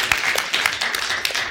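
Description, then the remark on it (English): An audience claps together when asked to clap if they think Facebook is the most trustworthy company on a slide, a dense, irregular patter of many hands at a steady moderate loudness, with sharp individual claps standing out from the crackling wash. “If you think Facebook is the most trustworthy company on this slide, clap now.”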